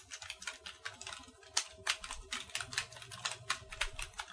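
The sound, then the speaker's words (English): Rapid, irregular clicking of keys on a computer keyboard found in the trash, a steady stream of crisp taps with no talking over it. “And he's typing on it and smiling like a Muppet.”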